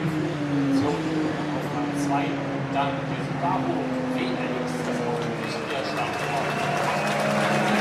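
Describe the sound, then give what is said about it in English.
A crowd cheers steadily at a motor race as an Opel Manta goes by, with the cars leaving the grid for the formation lap: a broad continuous roar of voices and clapping. Low engine drones run underneath, and the noise stays loud and sustained for the whole stretch. “That's a huge cheer for the Opel Manta going down there.”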